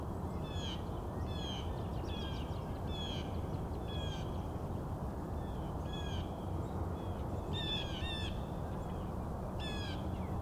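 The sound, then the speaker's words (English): A blue jay calls repeatedly, a series of harsh, raspy bursts coming in quick clusters over a steady rumble of wind or traffic, clearly audible. “Blue jays are very vocal.”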